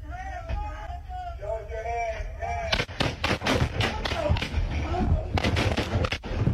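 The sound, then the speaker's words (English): Raised voices give way to a rapid, irregular volley of sharp, loud gunshots, roughly a dozen cracks fired in quick succession with brief pauses between bursts. “I'm shot. He shot.”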